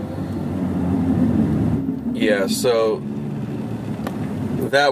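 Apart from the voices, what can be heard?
road traffic heard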